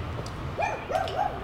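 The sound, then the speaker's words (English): A small pug named Walden lets out a quick run of high-pitched, wavering yips and whiny barks, fairly loud, as he guards the yard from a front stoop, with no one talking over it. “Walden is currently protecting our yard, even though he is a small pug with no strength.”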